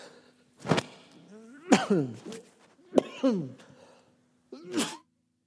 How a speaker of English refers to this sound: Well, I hope that doesn't continue. I know when you cough into one of these microphones, it sounds terrible. I know.